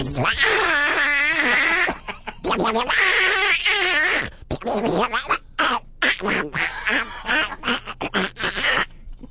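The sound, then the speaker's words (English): A person imitating Donald Duck's raspy voice with a ball in their mouth squawks and quacks in loud, rapid, garbled bursts, with brief pauses between the outbursts. “Let me hear a little more Donald Duck getting sodomized.”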